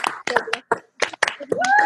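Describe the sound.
A short burst of scattered hand claps from a small group applauding someone's birthday, uneven, with voices chiming in and a rising cheer-like tone toward the end.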